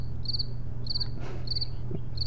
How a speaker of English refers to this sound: No, it's crickets. It's crickets. So, it's all crickets.